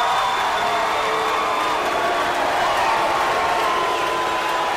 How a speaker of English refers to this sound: Suddenly, it was like, at last, it's on. There was a half minute of cheering, followed by a half minute of booing, and nothing had happened yet.